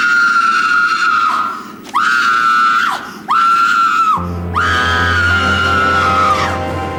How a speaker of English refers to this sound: They're all in the bridge room away from the dead body and then you just hear this... blood-curdling scream.